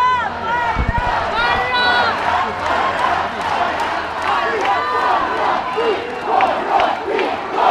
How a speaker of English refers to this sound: So the government MPs are leaving Parliament at the moment, and people are shouting out, corrupt, corrupt, corrupt, out, corrupt, corrupt.